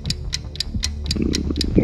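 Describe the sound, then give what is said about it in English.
A steady clock ticking as a timer during a quiz question, with sharp, evenly spaced clicks about four per second, crisp, over a low background murmur. “Clock's ticking.”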